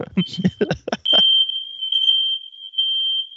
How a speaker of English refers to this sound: Well, we got the fire alarm situation taken care of. Wasn't anything detrimental to the safety and security of our co-host. So that's funny. First we lose connection, then we get a fire alarm.